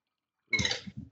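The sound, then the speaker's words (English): A drink is poured into a glass, filling it, in a short, bubbly gush with a couple of gurgling splashes at the end. It lasts well under a second, with no voices. “So we're going to take this, pour that right in, fill that up as high as you like.”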